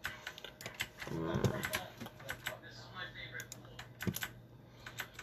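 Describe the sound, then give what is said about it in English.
Rapid, sharp computer mouse clicks repeat irregularly, crisp, with a brief muffled voice murmuring underneath partway through, as someone tests whether the clicks are louder than their voice. “I was just testing out the mouse clicks to see which one's louder, my voice or the mouse clicks, and apparently it's the mouse clicks, so you know, that's good.”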